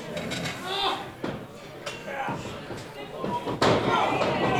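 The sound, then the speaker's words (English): A chair is shifted and set down, giving several sharp knocks and thuds spread over a few seconds, while people talk in the background. “Hey, buddy, can I take this chair?”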